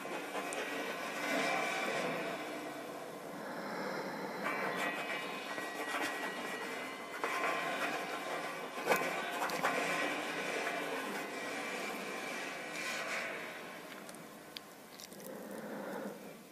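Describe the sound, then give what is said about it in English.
A feather tip scratches lyrics onto metal in a steady, grating stream, with thin high squeals and scraping tones running unbroken at a fairly even loudness for the whole stretch, no voices. “I like the way that this feather tip sounds, writing the lyrics on the metal.”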